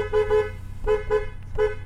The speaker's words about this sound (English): Yep, this is Hucky's method of herding goats, by car horn.